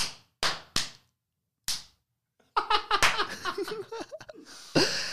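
Four sharp, separate hand claps ring out with brief pauses between them, then a burst of lively laughter and excited voices takes over for the rest.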